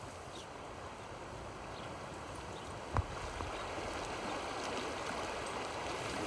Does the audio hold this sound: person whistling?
no